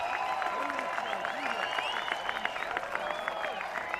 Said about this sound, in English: Hear the crowd coming to life. There they go. Here they go.